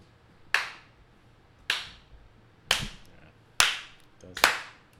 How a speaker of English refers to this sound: Slow clap, ladies and gentlemen.